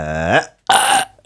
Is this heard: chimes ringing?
no